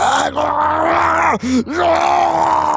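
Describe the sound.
A voice imitates a strained, gurgling scream, loud, sustained for nearly three seconds with a couple of brief catches midway before straining on again.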